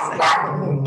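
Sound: small dog barking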